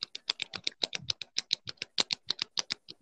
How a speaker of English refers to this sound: So the sixth one is clicking the pen. Oh, do I have a pen?